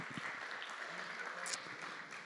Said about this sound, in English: I'd just like you to just give a round of applause to everyone that serves, because church doesn't happen unless these guys are here serving.